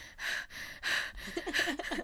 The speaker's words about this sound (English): My breathing. Okay, it's fine, it's fine.